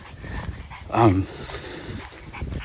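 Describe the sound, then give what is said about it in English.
A dog on a walk in hot weather lets out a single short, high whimper, lasting only a moment against a low outdoor background hum. “As you can hear, the dog probably.”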